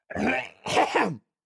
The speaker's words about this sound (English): Clear your throat right now. Just see what happens.